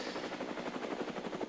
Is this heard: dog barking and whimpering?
no